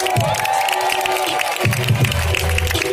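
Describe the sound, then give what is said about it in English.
A crowd cheers and applauds a speaker after a speech, in a dense, steady roar, with clapping and shouts blending together at a loud, sustained level for the whole stretch. “Yo, yo, give it up for Iman, y'all. Y'all can do better than that.”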